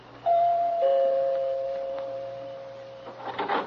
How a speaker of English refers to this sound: Back to the night I walked in the shadows of a flagstone path and stopped a moment to look at the name on the door before I pressed the bell.